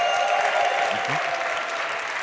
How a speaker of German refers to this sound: Einen Riesenapplaus an unsere neue Bingo-Verstärkung